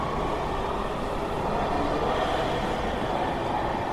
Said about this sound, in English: The train sped up and disappeared through the tunnel.